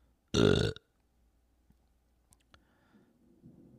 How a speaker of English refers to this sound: Man, burps feel good. Sometimes I get kind of clogged up, but that burp felt good.